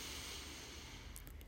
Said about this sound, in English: Take a deep breath.